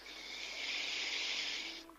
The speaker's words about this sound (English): So breathing in again for 4.